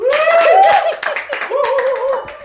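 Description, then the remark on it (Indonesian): A few people clap their hands in a quick, scattered burst of applause, loud, while voices call out and cheer over it. “Tepuk tangan untuk Narasi.tv.”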